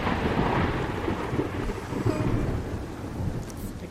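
A deep, rolling rumble of thunder fills the space, loud and sustained, with a hiss of rain underneath and no one speaking.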